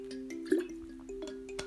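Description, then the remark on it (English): A water bottle sloshing and dripping, with a few soft plopping sounds and small liquid knocks over a low steady hum, no talking. “You can hear the lovely water bottle there.”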